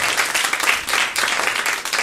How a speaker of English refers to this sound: I don't know why you clapped. I haven't done anything yet. Please sit down and calm down.